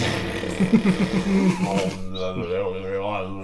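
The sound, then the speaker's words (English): A voice imitates a didgeridoo, making a low, buzzing, steady drone for about three seconds, with wavering overtones that wobble and shift as the mouth shape changes. “The didgeridoo noise, yeah. Just like didgeridoo noise”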